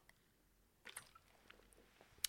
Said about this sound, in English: First of all, folks, let me just take a swig of water here. Don't mind me.